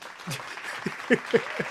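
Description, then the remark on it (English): A sitcom studio audience bursts into brief applause as the character Mark comes in the door as special guest on the Nolan and Allen show, a dense wash of clapping with a few sharper claps and some cheering voices mixed in, moderately loud. “and Mark has his own, like, little, you know, eruptive applause, like as soon as he comes in the door.”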